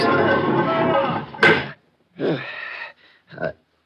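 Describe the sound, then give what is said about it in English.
A heavy secret entrance door in a building, opened by pressing a rock, is pulled shut from inside: it scrapes and grinds for over a second, then shuts with a loud, sharp slam. A few shorter, fainter scuffing bursts follow after a brief pause. “Now, you press one of these rocks, and it's supposed to open the door.”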